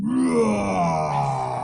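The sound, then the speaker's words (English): A human voice imitates a dinosaur roar for a sound effect set, with no processing: one sustained, gravelly groan whose pitch starts high and slowly slides downward, staying loud and steady for under two seconds, with no other talk. “And so actually quite seriously, hear this dino roar.”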